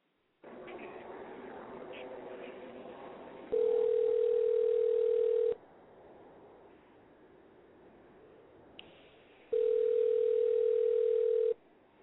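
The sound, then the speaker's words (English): An outgoing phone call to a woman rings: two long, steady ringback tones about two seconds each, separated by a pause, loud and clear over a low background murmur. “We're going to get my girl on the phone.”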